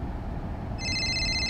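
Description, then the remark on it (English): Jones's phone starts ringing partway through with a steady, high electronic trill, fairly loud, over a low rumbling background hum. “Jones's phone rang.”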